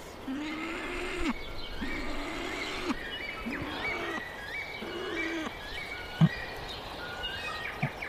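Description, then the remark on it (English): A low, rough growling call from a male bird repeats in short phrases. He is calling his mate or chicks to say he has food, calling with his mouth full, while other birds call and chirp at higher pitch in the background. “So that growling, is that just him reacting to those other birds calling?”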